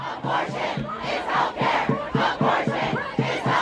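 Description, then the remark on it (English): A large protest crowd outside the US Supreme Court, gathered after news of a leaked draft opinion overturning Roe v. Wade, chants loudly in rhythmic unison, voices rising and falling in repeated bursts, with shouting and general crowd noise filling the open space. “As the news spread, a crowd started to form outside the Supreme Court.”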